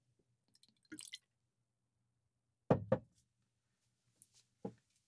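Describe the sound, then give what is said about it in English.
Glenfiddich 15 whiskey being poured into a glass: a few short liquid glugs and splashes in separate bursts, with quiet pauses between and no talking. “Let me pour it.”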